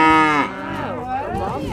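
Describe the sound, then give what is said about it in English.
A single long, loud moo from a Highland cow in the south of Scotland, starting strong and full before dropping into a lower, wavering groan that trails off. No one speaks over it. “People are obviously attracted to Highland cows.”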